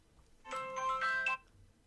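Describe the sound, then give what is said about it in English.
A short, bright electronic mobile phone ringtone melody plays for about a second with clear tonal notes, moderately loud, then cuts off into quiet. “My phone turned. Sorry.”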